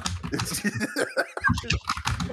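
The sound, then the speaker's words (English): Rapid typing on a computer keyboard as someone writes an OKCupid profile: a dense, irregular run of crisp clicks and taps at moderate loudness, with a faint tonal murmur underneath. “Can you hear that? I'm writing a fucking essay here.”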